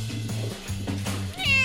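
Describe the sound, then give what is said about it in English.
Dusty Springfield, a pet cat, gives a clear meow near the end, its pitch rising and bright, after a moment of low, steady background hum. “Meow.”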